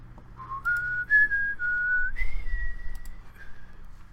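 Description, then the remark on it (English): A person whistles a short, wavering tune of a few held notes that step up in pitch. It is fairly thin and breathy over a low background rumble, with no talking. “What a nonsense weak whistle that was.”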